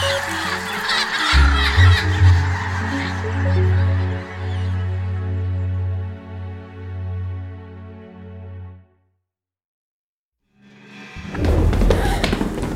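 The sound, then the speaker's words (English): A loud flurry of harsh squawks and beating wings from birds attacking churns for several seconds, falls silent briefly, then erupts again in another noisy burst. “Get away from me, you awful birds!”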